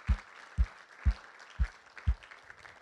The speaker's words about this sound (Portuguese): E toda a igreja diz, toda a igreja diz, aplauda o Senhor que Ele merece, Ele é bom, Ele é fiel.